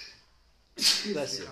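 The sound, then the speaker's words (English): After a moment of quiet, a single sharp sneeze bursts out, a hissing explosive onset trailing into a brief voiced tail. “Bless you.”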